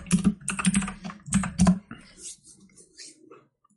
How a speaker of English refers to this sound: All this wonderful keyboard clicking that I will have to edit out.